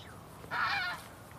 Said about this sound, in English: That actually I think was a widgeon calling. I've forgotten it because I haven't heard it since last year. It has a sort of wee-oo.